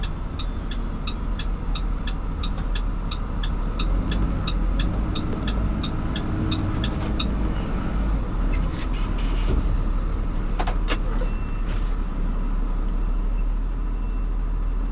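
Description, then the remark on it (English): A car drives along with a steady engine and road rumble as it drives over to park, while a rapid, regular ticking like a turn signal clicks through the first half before fading out. No one speaks. “I'm gonna go park over there.”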